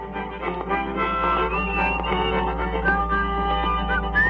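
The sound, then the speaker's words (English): A man whistles a wavering melody along with his own old record of a guitar song, taped on a tape recorder around 1950, overdubbing and harmonizing with himself; the whistle rides on top of the steady, slightly muffled music throughout. “You could hear him overdubbing and whistling and harmonizing with himself.”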